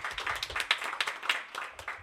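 A round of applause from a crowd, dense overlapping claps with sharp individual hits standing out, steady and moderately loud throughout with no voices.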